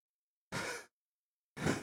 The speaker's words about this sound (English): you hear how heavy I'm breathing right now?